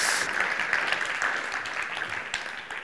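A crowd claps steadily, a dense, even patter of many hands at a moderate level, with no one speaking, the applause holding for about three seconds.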